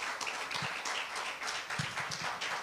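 An audience claps together in a dense, steady burst of many overlapping hand claps, sustained and fairly loud throughout with no voices standing out.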